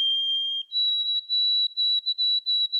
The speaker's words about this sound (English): That's easy. That's a white-throated sparrow.